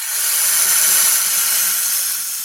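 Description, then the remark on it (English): A steady, loud hiss of rushing compressed air lasting the full two and a half seconds, bright and breathy with a faint low rumble beneath, imitating a snake's hiss. No one speaks. “The great reveal is... It's a snake hiss.”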